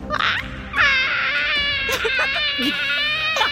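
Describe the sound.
A person voices a monster's shrieking roar: a loud, high, strained screech that wavers in pitch, starting with a short burst and then holding steady for several seconds.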